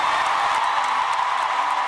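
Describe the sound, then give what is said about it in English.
A large concert crowd at Madison Square Garden applauds and cheers for Queen Elizabeth II's 70 years of service after her passing. A dense, steady wash of clapping and voices stays loud and unbroken throughout, with no single voice standing out. “Please join me in a round of applause for 70 years of service.”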